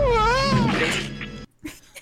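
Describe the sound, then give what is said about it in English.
A cartoon cat lets out a loud, wavering howl lasting about a second and a half. It cuts off abruptly and is followed by a short, dull splat. “And it's just like, oh, it's a great little howl from him.”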